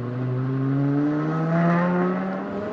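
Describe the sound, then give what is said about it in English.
A V10 car engine revs steadily through its big tri-exhaust, harmonic pitch climbing slowly and swelling slightly near the middle. It's loud and continuous with no talking. “Got the big tri-exhaust on the back. This is a V10, right?”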